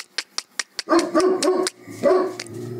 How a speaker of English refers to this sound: Sorry, my dog's barking. I don't know what's going on.